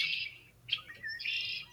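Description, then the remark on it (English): Red-winged blackbird calls, a buzzy trilling song with sharp chirps, played back faintly and slightly tinny from a video recorded on a phone, with no talking over it. “I'm playing a video from my phone of the sound of the red-winged blackbirds”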